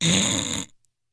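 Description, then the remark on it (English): A person imitates one loud, rasping snore, a harsh throaty snort lasting under a second that cuts off abruptly into silence. “I know the neighbors know my snore.”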